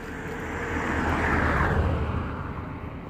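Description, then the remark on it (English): A car passes along a country road, a low rumbling roar of tyres and engine that swells to a peak midway and then slowly fades away, with no voices. “Another car coming, so hopefully it'll be quiet again after that.”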